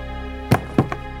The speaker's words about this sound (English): Gun in drawer.